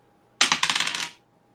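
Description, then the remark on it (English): Dice clatter across a hard tabletop in a quick burst of sharp, rattling clicks that slow and stop in under a second, fairly loud with no voices; a twenty-sided die rolled during a tabletop role-playing game, landing on 17. “So we're going to roll nat 20, I think, just for funsies.”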